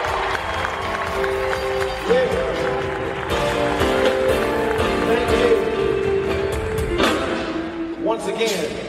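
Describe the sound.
An audience claps and cheers in a steady, dense wash of applause lasting several seconds, with crowd voices and some sustained musical tones mixed underneath.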